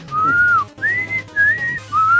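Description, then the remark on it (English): A person whistles a short, repeated tune of four rising-and-falling notes, imitating the Konami whistle sound from its sports video games, loud with a low hum underneath. “And that core is that Konami whistle sound that seemed to be in all their sports games.”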